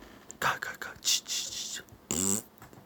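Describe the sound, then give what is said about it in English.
A voice makes breathy, airy spooky ghost noises for over a second, then finishes with a short, buzzy imitation of a fart, fairly loud. “Okay, it was scary ghost, and then it farted.”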